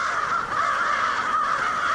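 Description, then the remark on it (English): A dense chorus of tens of thousands of crows, massed in winter around dusk in Auburn, a small city about 25 miles southwest of Syracuse, cawing continuously, overlapping harsh calls filling the air at steady loudness, with no talking. “And each winter, a lot of crows do fly to this community of 28,000 people. Tens of thousands of them.”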